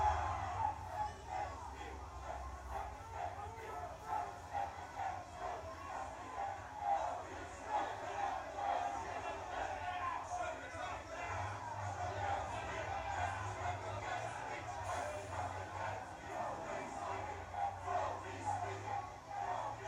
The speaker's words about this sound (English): 653 failed and still they can't stop yelling.